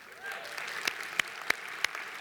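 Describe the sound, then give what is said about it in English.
Light, scattered applause from an audience answering a question about whether they are excited that Lucas is coming back: a patter of many hands with a few sharper, louder claps standing out at irregular moments across about two seconds. No one speaks. “Some of you aren't clapping.”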